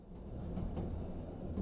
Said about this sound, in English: It's a summer night in 1902. You're on the night train leaving Minneapolis, headed east.